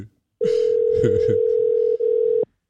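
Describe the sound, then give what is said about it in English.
A steady, fairly loud telephone tone hums for about two seconds, the ringback of an outgoing call to a dad who does not answer, with a brief dip near the end and faint background voices underneath. “Nah, just call it, boy.”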